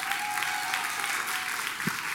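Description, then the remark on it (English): A crowd at a church service claps for a pastor, a dense wash of overlapping handclaps with no pauses, loud and continuous throughout the short stretch. “Y'all clap, but you act like he wasn't going to do it.”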